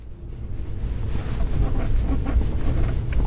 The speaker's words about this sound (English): Jason Thiesfeld is driving a white pickup truck over a network of newly built dirt roads